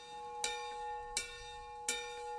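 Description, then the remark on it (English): The bell of the old tower rings with three evenly spaced strikes, each a bright clang over a steady, sustained metallic hum of overlapping tones. It is fairly quiet, and no one speaks. “Mrs. Mayor, the old tower has rung its bell.”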